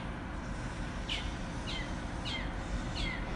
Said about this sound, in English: that bird is loud, isn't it? I think it's mating, honestly. I think it's just, like, trying to find another bird to mate with, so it's calling out. We're gonna have eggs in that tree soon enough.